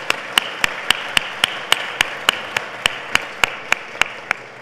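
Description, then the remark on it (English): Audience applause at a Canadian Club event, thanking the event sponsor KPMG: a steady wash of many hands clapping, with one sharp, evenly timed clap cutting through about four times a second, lasting several seconds without voices. “And today's event is sponsored by KPMG, so a round of applause to thank them, please.”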